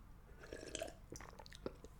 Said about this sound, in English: Sip of water, folks. Quick sip of water, boss.